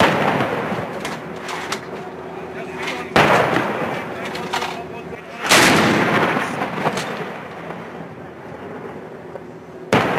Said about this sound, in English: What you heard right behind you were the sound of Bofors guns directly targeting the top of Tiger Hills